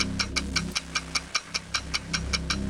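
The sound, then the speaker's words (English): A game show countdown clock ticks rapidly and steadily, about sixteen crisp, bright clicks in under three seconds, over a low, sustained musical drone. “The clock begins when I'm done.”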